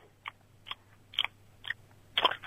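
Someone chewing a Mini Babybel cheese: five soft, moist chewing bursts at a steady, unhurried rhythm, the last one loudest, over a faint low hum with no talking.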